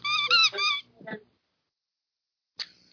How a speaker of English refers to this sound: Hey, guess what? I have a lamb chop squeak toy.